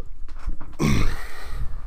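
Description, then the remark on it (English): A chair creaks and squeaks loudly, a strained, groaning creak that starts after a few soft shuffles and drags on for about a second. “My chair is the squeakiest chair in America.”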